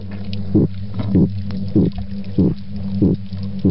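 A female midshipman fish grunting: five very brief, low, knocking grunts repeating at a steady, even pace, heard over a continuous low, droning hum, with no talking.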